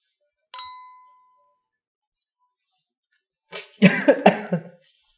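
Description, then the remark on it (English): A single bright glass clink rings and fades, then after a short pause someone coughs in a quick cluster of two or three harsh bursts after drinking a shot of Bedlam vodka, Jason Derulo's vodka brand, with no talking. “Pardon the cough.”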